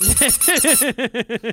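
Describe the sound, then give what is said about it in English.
A breast-shaped novelty squeeze toy from a Japanese coin-operated capsule machine squeaks about nine times in quick, rhythmic succession, each squeak a loud, rising-then-falling pitched honk, the first few with a hissy, airy edge. “You get a titty squeak.”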